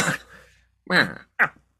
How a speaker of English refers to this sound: Sorry, I had to cough.